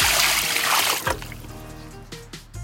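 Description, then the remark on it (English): A loud, hissing rush of water, collected in a bucket in the shower, is poured onto tomato plants and splashes for about a second, then cuts off, leaving a quieter background with a low steady hum and a few faint bursts. “I pour them on my tomato plants.”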